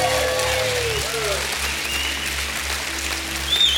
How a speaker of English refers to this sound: Give me my hand clap and a shout of praise.